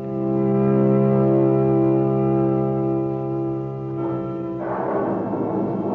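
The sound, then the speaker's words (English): A deep, sustained rumble of a thunderstorm fills the air, then steady rain suddenly starts to pour in the final seconds, a loud hiss over the lingering low drone. No one speaks. “The storm swoops down. Rain begins to fall.”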